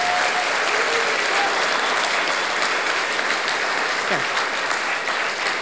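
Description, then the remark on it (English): A sustained burst of audience applause, dense and steady clapping from many hands at a fairly loud level throughout. “Give a round of applause, you guys, to these...”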